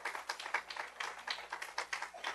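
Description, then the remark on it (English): A group of people clapping together in appreciation of a group of workers, a dense, steady patter of many hands at moderate volume with no voices over it. “And these guys didn't do it for the accolades of man, for us giving them a clap or giving them a handshake.”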